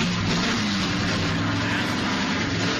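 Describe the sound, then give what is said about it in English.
A loud car engine starts and roars steadily, its deep droning pitch wavering slightly as it revs, with no voices over it. “are we ready to start the car? Let's go, buddy. All right, fire it up.”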